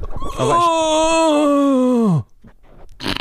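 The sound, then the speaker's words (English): A voice imitates someone falling off a multi-story car park: a long, loud sustained wail that holds steady for nearly two seconds, then sags downward in pitch and cuts off abruptly, followed by a few faint sounds. “I want you to do the sound effect to someone who's just fallen off a multi-story car park.”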